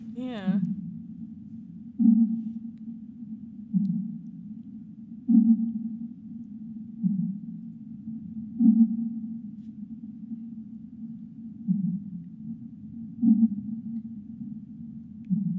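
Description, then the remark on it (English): A low, steady rumble from a sped-up earthquake recording drones throughout with a swelling pulse every couple of seconds. A brief high descending chirp sounds at the very start. “And there's the rumbling noise is the earthquake coming up.”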